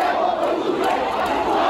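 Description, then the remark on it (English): A large crowd of protesters rallying in Yangon against a military takeover shouts and chants together in a dense, continuous roar of many voices, loud, with no pauses throughout. “It's been another day of rallies against a military takeover launched last week. The army banned protests yesterday, but crowds still turned out.”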